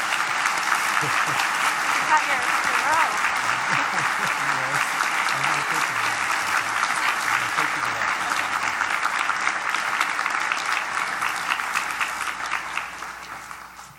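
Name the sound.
audience applause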